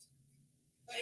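sneeze

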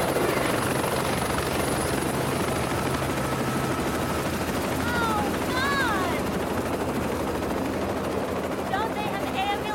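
helicopter rotor noise

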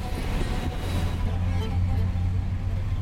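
car driving

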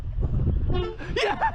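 train horn honking

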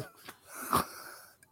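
cough

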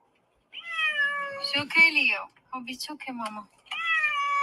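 upset cat meowing loudly

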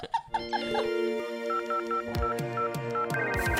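telephone dialing and ringing

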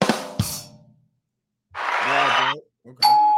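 doorbell ding-dong sound effect

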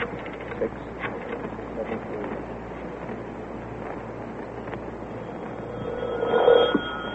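telephone ringing

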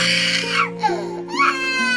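baby crying

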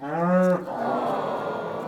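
cow mooing

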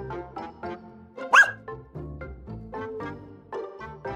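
small dog barking

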